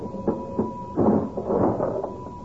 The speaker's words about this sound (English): My goodness, I heard that cash register ringing all the way downstairs in the stockroom, McGee.